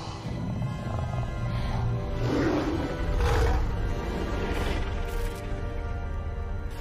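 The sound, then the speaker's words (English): A giant ape roars, a deep, rumbling growl that swells and surges for several seconds over a thick low-pitched drone, loud and continuous with no voices. “Oh, big monkey.”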